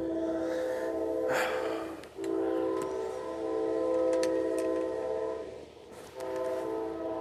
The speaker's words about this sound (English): Oh, look, there's another train coming from the opposite way.